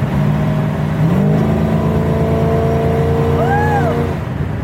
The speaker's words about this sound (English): See, that's just high gear giving it gas, so.